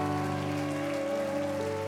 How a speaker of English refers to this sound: Let's clap our hands and thank the Lord. Come on, if you're excited about what you feel tonight, the liberty that you feel tonight, why don't you clap your hands and lift your voice?